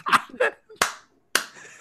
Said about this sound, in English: Weak clap. Aye, but it was just a kind of fake.